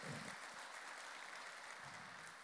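A church audience gives an affectionate round of applause for a man who won his father to Christ, a dense, steady wash of many hands clapping together that holds evenly for a couple of seconds with no voices on top.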